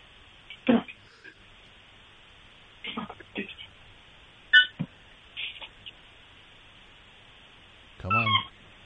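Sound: dog vocalizing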